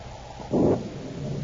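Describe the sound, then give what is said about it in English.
A low, distant rumble of thunder from an approaching storm swells briefly and fades back into a steady dull background roar, with no voices present. “I'd like to get this job over with before that storm hits us.”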